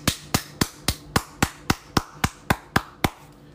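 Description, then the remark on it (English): A single person claps their hands about eleven times in a steady, even rhythm, each clap sharp and close, with no talking during the clapping. “And I want to give an applaud to the men who mind their business, who's worrying about themselves and not worrying about what other communities are doing.”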